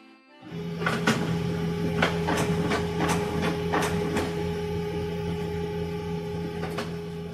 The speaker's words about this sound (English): Have you ever had to learn how to use a finicky printer? You know, the one that idles, jams, or just doesn't print? Maybe you need to hit print twice or give it a light smack on the side.